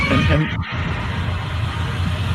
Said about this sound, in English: Got lots of screams for you. Yeah. It's like, I just went and downloaded like 1,000 Godzilla screams. And they're pretty much all the same.